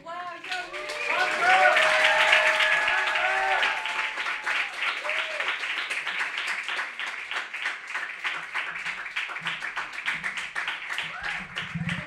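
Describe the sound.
A crowd at an evening poetry event claps steadily and loudly for several seconds, applauding the person who took a video, with whoops and cheering voices rising over the applause near the start before it settles into dense, continuous clapping.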